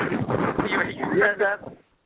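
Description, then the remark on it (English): Heavy wind buffets the phone microphone of a caller in Massachusetts, a loud, continuous roaring rumble over a narrow telephone-quality line, with muffled speech partly buried beneath it before it cuts off. “There's a lot of wind in your phone.”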